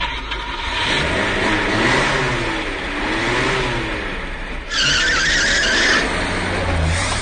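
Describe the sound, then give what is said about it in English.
A stolen car's engine roars and revs steadily, then tires let out a loud, sharp screech for about a second before the engine keeps revving as the car speeds off, loud. “Trying to escape in a stolen car, eh?”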